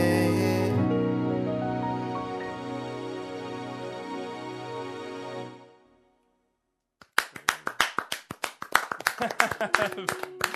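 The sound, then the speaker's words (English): A sustained musical chord rings out and fades, then after a brief silence the band members break into lively clapping for themselves after performing for Triple J's Like a Version, with uneven overlapping claps for the last few seconds. “You boys gave yourselves a bit of a clap there, and so well deserved.”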